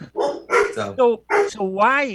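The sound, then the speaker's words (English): A pet dog barks in a quick run of five or six loud, high-pitched yaps, the last one stretching into a whiny, rising-and-falling yelp. “Forgive my dog.”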